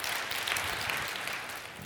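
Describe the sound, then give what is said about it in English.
An audience applauds in a steady, dense patter of many hands clapping that holds at an even, moderate level for about two seconds, with no voices over it. “You can amen or applause.”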